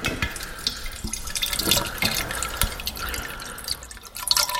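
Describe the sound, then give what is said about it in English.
Liquid splashes and trickles steadily into a glass for a few seconds, fairly loud, with a bubbling, gurgling texture and no voices; a gin-like spirit is being poured for tasting. “Let me just pour that for you right now.”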